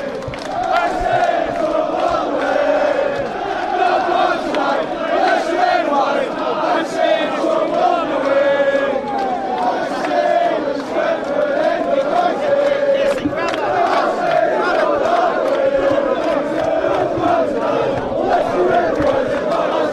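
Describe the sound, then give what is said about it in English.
A large crowd of football fans protesting against the Glazers chants in unison, a loud, sustained roar of many voices with rhythmic, repeated shouts and no break in the noise. “Protest. It's all behind one cause, which is getting away the Glazers.”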